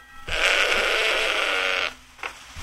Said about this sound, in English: So, excuse my goat.